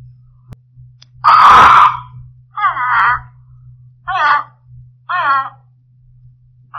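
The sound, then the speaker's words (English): A caged parrot squawks in protest as the cloth is pulled off its cage: one loud, harsh screech followed by three or four shorter, raspy squawks at steady intervals, with a low steady hum underneath. “We crouched there behind the curtains, watching the parrot. He protested a while at being so rudely disturbed by some unseen agency.”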